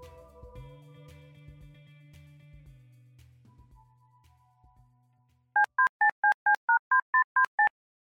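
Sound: telephone dial tone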